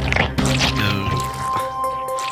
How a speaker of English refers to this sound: It is a king's ransom of disgusting slop noises. Oh, man. And so I give unto you a king's ransom of disgusting slop noises.